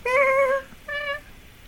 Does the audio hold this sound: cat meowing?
yes